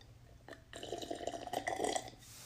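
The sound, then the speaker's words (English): A loud, exaggerated slurping sip of coffee, a wet, gurgling draw of liquid lasting over a second and swelling as it goes, with no talking. “I need to take a sip of coffee, guys, because I'm getting over a cold.”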